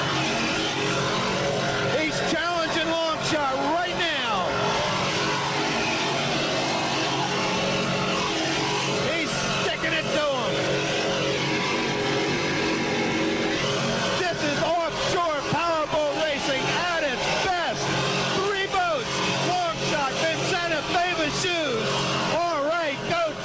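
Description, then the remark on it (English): Loud, continuous roar of offshore racing powerboat engines during an offshore race, recorded from in the boat, their pitch rising and falling as they rev, with indistinct voices mixed into the steady din throughout. “This spectacular footage captures the flavor of offshore racing and gives you the in-the-boat feeling of just how exciting this sport is.”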